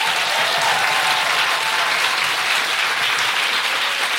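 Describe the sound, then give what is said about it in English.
An audience at the Sam Wanamaker clapping steadily, a dense, sustained wash of applause that stays loud and even from start to finish, with no voices standing out. “So before I do that, can I just have a big round of applause to everyone here”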